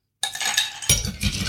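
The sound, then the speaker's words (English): Regular ice cubes clatter and clink into a tall, thin Collins glass, filling it up: a dense jumble of bright glassy hits starting abruptly, with a second heavier tumble midway, fairly loud with no talking. “Yeah, I'm just using ice cubes. Okay. Fill that up.”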